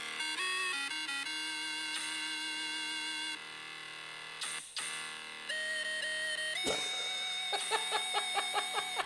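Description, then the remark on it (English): An electronic mobile phone ringtone plays a bright, synthetic melody of stepping notes, ending in a quick run of repeated beeping pulses, as a phone being called rings in the back of a locker room. It is fairly loud and clear, with no one talking. “So we got the number and we rang it. And we waited to see who answered or whose phone lit up.”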